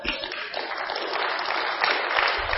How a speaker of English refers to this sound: Somebody clap.